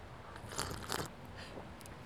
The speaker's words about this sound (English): I'm usually not a sipper. I did that for the microphone.